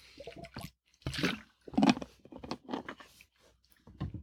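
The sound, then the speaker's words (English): Slurping and swallowing noises as someone sips a drink, a series of soft wet mouth sounds spread over a few seconds with brief pauses between them. “And that will be, and I will take another sip here.”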